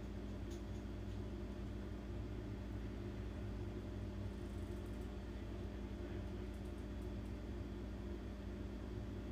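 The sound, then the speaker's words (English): A big truck's engine rumbles outside, a steady, deep droning hum that holds at an even level without fading in or out. It is muffled and fairly quiet, with no voices. “I talked about this fucking motorcycle. It's a truck. It's a big truck.”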